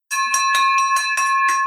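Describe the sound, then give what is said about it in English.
A bright bell rings rapidly and loudly, about six quick strikes in steady succession, its metallic tones sustaining and overlapping into a continuous clang, with no voices present. “We got a victory bell, my friend.”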